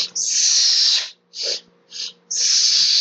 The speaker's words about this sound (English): So that's reverse breathing. It's you're actually pressurizing the breath. So that's why it's coming out. So it sounds like that's pressure.